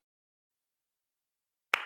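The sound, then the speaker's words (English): A dog door flap slaps shut once with a sharp smack after near silence, followed by a brief rattling decay as the flap settles, in a house with three dogs running around. “And I am house sitting again, so if you hear the doggy door slap, you know what's going on.”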